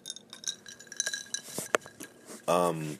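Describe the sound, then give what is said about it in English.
Several glasses clink together in a celebratory toast, with bright ringing tones and sharp taps spread over a couple of seconds, before a voice begins speaking at the end. “And cheers to more years.”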